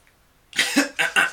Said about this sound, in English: Sorry, I was coughing.